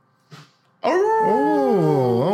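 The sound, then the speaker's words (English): After a short soft breath or yelp, people launch into loud, sustained wavering howls like a pack of dogs, several voices rising and falling together. “Well, y'all starting to sound like some old dogs.”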